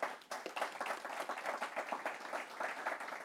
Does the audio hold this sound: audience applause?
yes